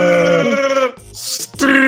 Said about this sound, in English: Why is your dog Chewbacca? Making fucking Chewbacca?